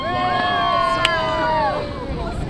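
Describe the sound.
The whale-watching boat Porto Mia out on the Caribbean Sea just offshore in the Dominican Republic, with a steady rumbling wash of engine and wind noise throughout while the voices of some 50 visitors searching for humpback whales carry over it.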